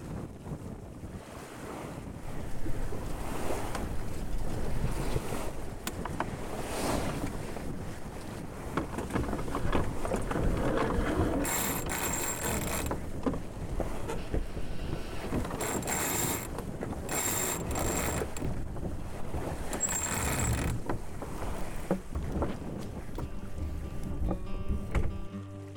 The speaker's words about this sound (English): The gusts were about maybe 25 or so, but once she starts hunting around the anchor, the halyards get going, the snubber draws tight, and it gets a little bit raucous up forward.